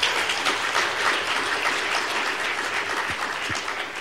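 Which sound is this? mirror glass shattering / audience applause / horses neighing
audience applause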